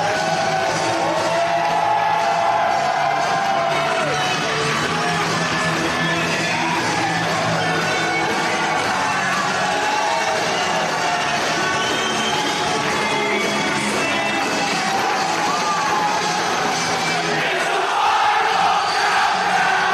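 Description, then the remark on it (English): A large arena crowd roars continuously in an in-arena recording, a dense wall of cheering with yells and shouts rising out of it, loud and steady throughout, with no single voice standing apart. “And in order to get through these, this one, I'm going to play the in-arena version, Patrick O'Dowd, for you, for one of your suggestions.”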